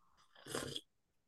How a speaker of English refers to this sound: Oh, I'm so sorry. I sipped that tea that probably came across. I didn't mean it was a big slurp of tea.